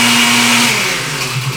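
A blender roars at full speed on its fastest liquefy setting, a loud, steady motor whine with a strong high hiss that shifts slightly in pitch as it churns, alone.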